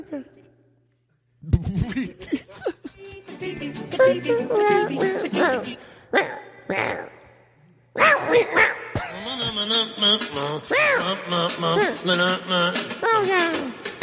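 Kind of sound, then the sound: animal, cat meowing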